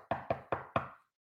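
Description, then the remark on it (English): A woman knocks on a door four times, firm, in quick, even succession, loud, followed by silence. “At my freaking door. Knocking.”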